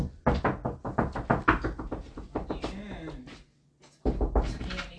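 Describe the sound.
Rapid, loud pounding on a door, a dozen or so knocks in a steady flurry, then a brief pause with a voice before another burst of banging starts.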